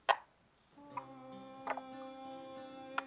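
Dice clatter in a few short, sharp clicks, spaced irregularly, with one quick double rattle midway, over a steady low hum of sustained tones. No one speaks.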